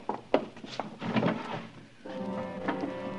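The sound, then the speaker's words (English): A wooden drawer is pulled open with a few knocks and a rough sliding scrape, then pushed shut with a longer grinding slide. It's moderately loud, with no voices. “Just one black glove in the drawer.”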